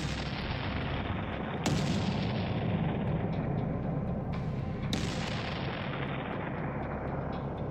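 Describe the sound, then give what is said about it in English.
Distant guns firing beyond the low hills across the water: two heavy booms land amid a continuous dull, rumbling roar of gunfire, loud and steady throughout, with no voices. “From beyond the low hills across the water came the dull resonance of distant guns and a remote, weird crying.”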